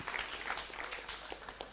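An audience breaks into applause, a dense, steady patter of many hands clapping at once, holding an even level throughout with no voices rising above it.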